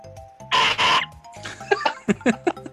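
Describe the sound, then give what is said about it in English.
A voice imitates a dying seagull: two loud, raspy screeches, then a quick run of thinner, squeaky, rising-and-falling cries with no words spoken. “Sounds like a seagull fucking dying or something.”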